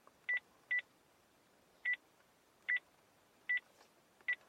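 Six short dual-tone beeps from a landline phone keypad as a number is dialed to call an iPhone, spaced irregularly over a few seconds, clear against quiet background hiss with no one talking.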